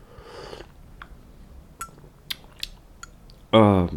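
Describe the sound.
A soft, airy slurp of someone sipping cold coffee, followed by a few light clicks and clinks like a mug being handled, before a voice starts speaking at the end.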